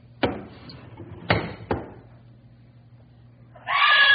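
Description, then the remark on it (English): Three sharp, separate bangs ring out at an uneven pace, then after a short lull a woman's loud, frightened scream suddenly breaks in and runs to the end, at night after she sees something big outside. “Why'd you scream?”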